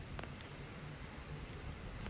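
A small fire burning to boil water, a steady soft hiss broken by scattered sharp crackles and pops, fairly quiet, with no one talking.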